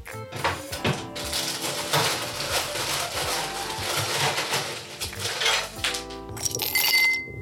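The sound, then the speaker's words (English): Ice cubes for a Johnny Walker highball clatter and clink into a glass in a dense, rattling burst lasting several seconds, fairly loud, followed by a few brighter settling clinks at the end. “So as usual, we're just going to need some ice.”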